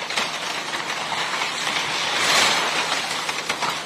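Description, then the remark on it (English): A giant excavator tears down a six-bedroom house, where four University of Idaho students were murdered, at dawn: a steady, loud wash of crunching and splintering wood and debris that swells midway, with scattered sharp cracks and no voices. “And a final blow from a giant excavator renders the six-bedroom house into thousands of pieces of matchwood.”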